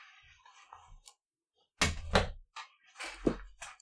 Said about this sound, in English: Let me close my fucking door.